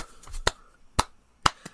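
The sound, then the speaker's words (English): Hands pat together in a steady rhythm, three crisp, fairly loud slaps about half a second apart, with a softer tap right after the last one. No one speaks. “They didn't do the hand pats, guys. You can't see us, but we doing the.”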